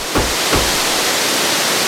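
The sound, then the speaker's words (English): A loud, steady roar of rushing water from a rapid river fills the whole stretch without a break, dense, with a couple of brief low thumps early on and no voices. “How would you get across the rapid river, adventurers?”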